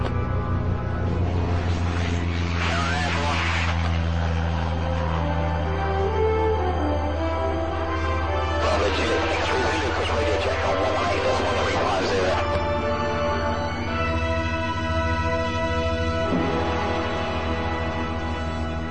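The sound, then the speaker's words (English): A small propeller plane's engine drones steadily, its tone holding level as it takes off with flaps set at 10 and speed rising through 35 to 50 knots, with bursts of rushing wind noise rising and fading over the hum. “Even though it was just a tiny aircraft, it was clear that this plane was packed with features those airmen of the 40s and 50s could only have dreamt of.”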